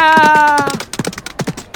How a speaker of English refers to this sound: Ah! Oh dear, I almost got run over by a large horse. It had fluffy hooves.